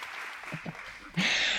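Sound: applause sound effect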